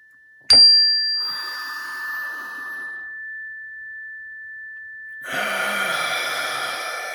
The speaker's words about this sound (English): And I got my chime back today, so we're going to use that.